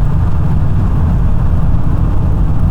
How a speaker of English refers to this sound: I guess if you hear, like, probably right now, you probably hear the wind hitting the car. You might even hear the road itself.